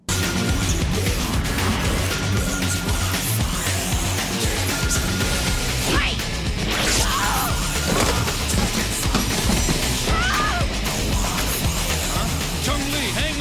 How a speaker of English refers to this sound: this fight scene is brutal. Like, you feel the punches, the kicks, and the slices when Chun-Li's bleeding, the expressions on their faces, the animated movements of it all, and the sound effects